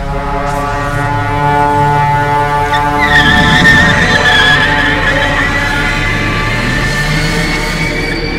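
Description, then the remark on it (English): A car engine roars at full throttle in a loud, steady drone, with a brief high tire squeal partway through as the vehicle speeds along. No one speaks. “Vehicle moving at its maximum speed.”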